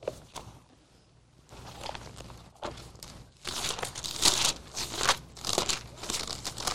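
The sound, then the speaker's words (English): Thin Bible pages rustle and crinkle in a series of soft flips as people turn to Matthew chapter 13, quiet at first and then louder and busier, like many people leafing through pages at once. “In fact, would you turn there?”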